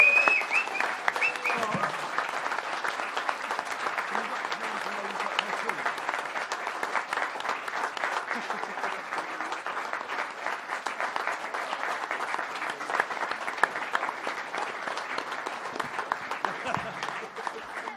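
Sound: round of applause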